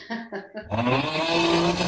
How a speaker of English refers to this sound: There's that great meme going around, but I can't find the right snore. Oh, there it is.